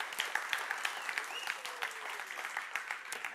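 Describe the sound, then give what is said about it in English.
An audience at a service claps steadily for the tech team and volunteers, a dense patter of many hands blending into continuous applause that stays even in volume for a few seconds, with no talking over it. “So let's give them a big round of applause.”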